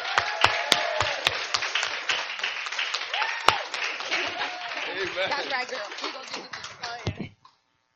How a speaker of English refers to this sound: Give a round of applause to all those who have been baptized.